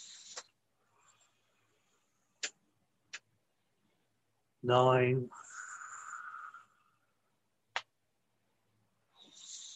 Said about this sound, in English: Breathing in the chi and breathing out the cha. For another 10.